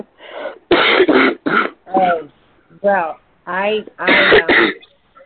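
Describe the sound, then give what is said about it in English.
Loud coughing and throat clearing in a run of about seven rough bursts, some harsh and noisy, others more voiced and strained, with short pauses between them. “I hope that by next week you won't have your bad cough, although they seem to stick around a lot.”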